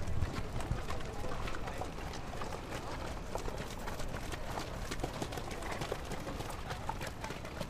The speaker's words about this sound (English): As you recover from this barrage on your senses, you might need to stand aside. While there's no cars, there's equally dangerous horses coming by.